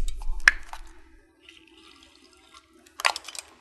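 Water is poured and sipped: a sharp clink and liquid splash at first, a quiet stretch with faint trickling, then a short burst of sipping near the end.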